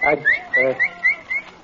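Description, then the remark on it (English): A person whistles a quick series of five or six short, rising notes, like calling a dog over, with a brief voice sound mixed in near the start. “All week you've been whistling like you was calling a dog.”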